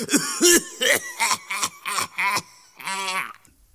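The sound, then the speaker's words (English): A run of about eight raspy coughs in quick succession, the later ones rougher and more voiced, ending in a longer, groaning hack after a brief pause. “By the time I went to bed, the smaller font cough, cough was cough, cough in 72-point font, bold and underlined in green.”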